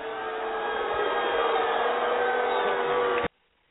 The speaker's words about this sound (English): Can we hear from the winner now, please? Hit the buzzer.